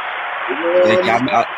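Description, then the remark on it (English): Steady clapping from a crowd welcoming a man back forms a dense hiss throughout, with a man's voice speaking over it from about halfway through. “You big round of applause for my man back in the house with us.”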